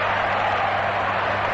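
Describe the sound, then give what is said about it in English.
A baseball stadium crowd applauding the batter Carey, a steady, dense wash of clapping and cheering that holds at an even loudness through the short stretch, with no distinct voices standing out. “So Carey responds to the applause with a single into left field.”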